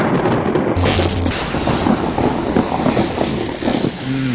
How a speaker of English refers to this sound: So this is what we call continuing repercussions from near lightning strike at Bubba's. Yep. Yeah, give me the lightning one more time. I'm going to let it hit me.